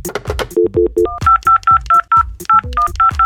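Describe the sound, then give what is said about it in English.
A quick run of about a dozen telephone keypad dialing tones, each a short two-note beep, punched in a steady rhythm with sharp clicks between them and no talking, as the Birdhouse Radio Show calls its call-in contest winner. “We're calling him up.”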